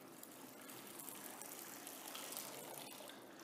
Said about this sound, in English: There's something about that sound, isn't there? The sound of running water, splashing against the basin. You probably have heard that over and over again, and we've heard that in sanctuaries.